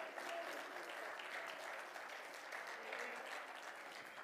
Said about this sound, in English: Oh, clap your hands and praise Him tonight.